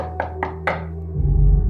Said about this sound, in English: the two hear a knock on Ronald's door